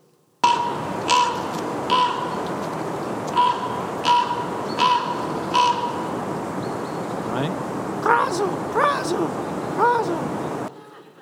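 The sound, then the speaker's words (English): A raven gives a series of harsh, piercing cries at irregular intervals, some short and clipped, others more warbling, over a steady outdoor wash of wind and surf. “It is derived specifically from the raven's piercing cry.”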